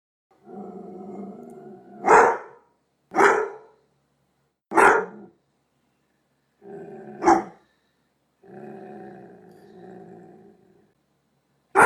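A dog growls low and steadily, breaking into four sharp, loud barks spaced a second or two apart, then growls again, with no one talking.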